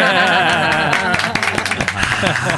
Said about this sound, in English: I got to hit the applause button because that was beautiful.